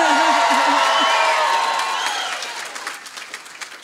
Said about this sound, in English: Nigella Lawson. I'll say that again because that wasn't a big enough cheer. Nigella Lawson.